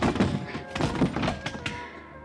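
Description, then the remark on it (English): A heavy car door slams with a solid thunk on a man's blackjack during a fight beside the car, followed by a few more dull knocks and bumps in quick succession, with no one speaking. “Managed to half Nelson and let the car door workers my blackjack.”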